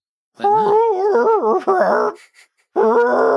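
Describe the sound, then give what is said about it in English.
A person's voice imitates an elk call with a long, wavering, groaning bugle that bends up and down in pitch, breaks off briefly, then resumes with a strained, rising tone. “That was the best call I've ever heard in my life.”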